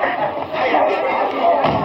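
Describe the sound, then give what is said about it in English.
A steady wash of crowd noise from a crowd gathered on a downtown city street, blocking traffic: many voices murmuring and chattering at once in an unbroken, fairly loud babble with no single speaker standing out. “Look at that crowd.”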